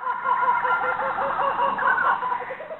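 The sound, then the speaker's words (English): A flock of chickens clucks continuously and fairly loudly, with a rooster crowing partway through. The busy, overlapping calls fill the short stretch, and no one speaks. “But yes, so that is the story of how chickens got to New Zealand.”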